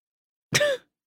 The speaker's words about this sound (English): I was trying to inconspicuously let out a burp.